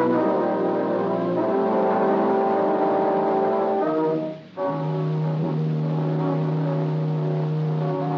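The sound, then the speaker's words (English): A car engine drones steadily at a constant, fairly loud level, with a brief drop partway through as if shifting gear, then continues humming. No one speaks. “I'll drive you to your car.”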